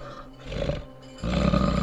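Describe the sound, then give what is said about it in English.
A many-headed beast, rolling onto all fours, gives a low, rumbling growl, steady at first and then swelling abruptly louder and rougher toward the end. No voices. “Rolling to all fours, a low directed growl fills the air.”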